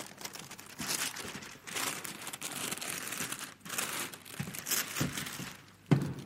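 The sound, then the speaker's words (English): Wrapping paper on a present crinkles and rustles for several seconds in bursts of varying intensity, with a sharper crackle near the end and no voices. “What great paper. And it's fantastic, isn't it? You think of all the things I could do with this paper.”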